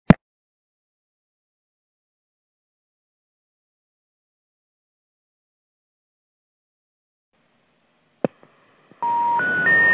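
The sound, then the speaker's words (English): A sharp click and long silence, then another click followed by a quick run of stepped electronic phone keypad tones as a phone call is dialed, each pitched higher than the last, clear with no voices. “Let me see if I can make a double call here.”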